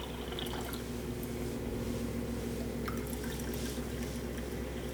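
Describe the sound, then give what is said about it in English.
Hot water, boiled twice, pours steadily into a cup to make tea for several seconds, a continuous trickling splash over a low background hum, with a few faint drips and clinks and no talking. “Well, I was just about to make myself a cup of tea.”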